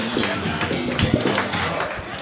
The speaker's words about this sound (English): One more round of applause for these two